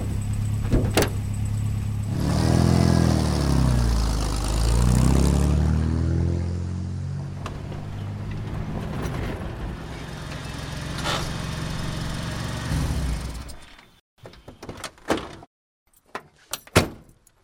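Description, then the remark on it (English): A pickup truck engine rumbles at a low idle as the truck stops at a steel gate, its pitch swelling and dipping for a few seconds, then it stops and a couple of sharp door clunks follow. No one speaks. “I'll ride back here on the tailgate. We're almost there, just 100 yards ahead.”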